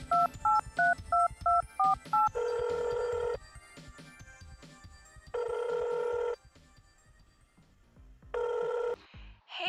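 A quick run of seven or so two-tone dialing beeps, followed by three long buzzing ring tones with pauses between them, then the line cuts in at the end. No one speaks.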